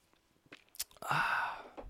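A sip from a drink: a few soft mouth clicks, then a short airy slurp lasting under a second, quiet and intimate, with no talking.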